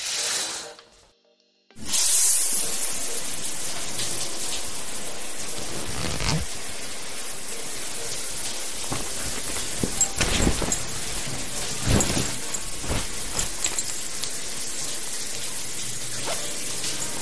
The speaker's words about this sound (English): There we go. That feels amazing. Hot, clean, running water. Oh, this temperature is ideal